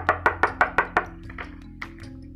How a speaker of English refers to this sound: As he polished his claws, he was startled by a knock at the door.